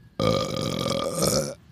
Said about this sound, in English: Do you think people hate it or love it when I burp in the mic? I think they love it. Do you like it? It was right in your ears because this is headphones on now.